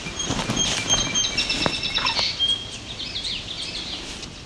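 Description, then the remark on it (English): A female yellow warbler calls overhead with sharp, high ticking chips, repeated irregularly over a background of other faint, thin bird notes. No one speaks. “So we appear to have yellow warbler above us, making all that sound. Female yellow warbler.”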